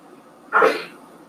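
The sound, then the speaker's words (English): A single sharp sneeze bursts out, loud and brief, rising suddenly from quiet and fading quickly afterward. “I'm sorry. Bless you.”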